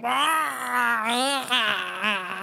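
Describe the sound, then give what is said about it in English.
A human voice imitates a goose shrieking: one loud, sustained, wavering wail that rises and dips in pitch for a couple of seconds, strained and moaning, with no other sounds around it. “The goose gave a shriek like a human being in agony.”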